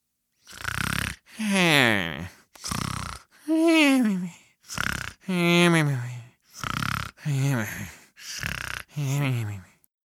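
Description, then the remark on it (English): A voice imitates loud, exaggerated snoring of a hare asleep at the side of a racetrack: about five rasping in-breaths, each followed by a drawn-out, falling voiced snore, repeated in a steady rhythm. “The snores coming from the side of the racetrack confirmed that.”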